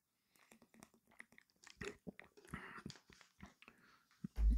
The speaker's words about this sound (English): Let me take a drink of water first, quickly.